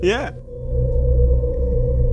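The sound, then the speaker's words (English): A short, swooping synthesized whale-like call with bright harmonics opens, then gives way to a steady, low electronic drone and deep rumble that sustains an undersea effect. “Hang on a minute, surely he didn't come from the whale synth.”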